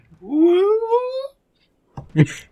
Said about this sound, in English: That's the ghost dies sound from Secret of Mana. Bye, ghost.